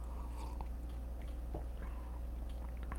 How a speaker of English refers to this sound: Let me have a sip of my coffee and try again.